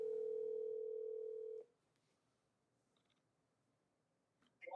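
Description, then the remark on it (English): A loud, steady telephone tone hums for about a second and a half as an outgoing phone call is placed, then cuts off into near silence, followed by a few faint clicks and a short burst of noise at the end. “And hopefully he will answer the phone.”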